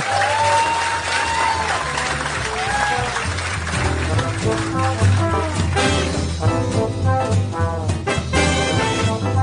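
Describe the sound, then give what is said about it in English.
A live audience claps steadily throughout as a live show in Los Angeles ends, a dense wash of applause mixed with upbeat music and a thumping bass line playing underneath, staying loud and even from start to finish. “Yeah, you can clap if you want.”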